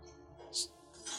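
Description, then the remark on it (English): A drinking glass drops from about 8 inches and shatters, a sharp bright crash followed by a brief scatter of high tinkling fragments, over a low background hum. “That the glass dropped from like 8 inches?”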